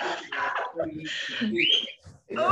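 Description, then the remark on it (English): A pet bird in a house lets out a few short, whistling chirps in the background, rising in pitch, while people talk over it. “we have a little comment in the background.”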